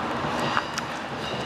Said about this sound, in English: That's just one of the local trains going past. They're noisier than the big trains, yeah, aren't they?